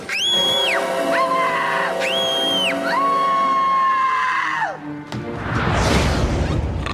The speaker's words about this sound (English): And of course she discovers the Grinch. The scream-off that they have.